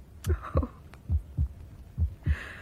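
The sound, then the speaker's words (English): A person's own heartbeat thuds in paired lub-dub beats, low and steady, three double pulses repeating at an even pace, muffled, with no voices. “How silly of me. My own heartbeat.”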